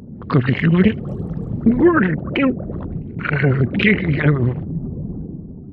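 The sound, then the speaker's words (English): A voice actor imitates a gurgling underwater creature by taking a bite of Jell-O, wet and bubbly, with warbling pitch rising and falling in several loud bursts, like something with bubbles under the sea. “In order to get that gurgly sound, I would take a bite of Jell-O and make the sound of something with bubbles under the sea.”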